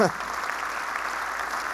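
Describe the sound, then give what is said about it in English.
Steady applause from a church audience, a dense, even wash of many hands clapping at once that holds at a constant level for the whole moment, right after a brief trace of voice at the start; the clapping follows news that a ministry center in Jenin, Israel was built with cash. “Yep, you can clap at that.”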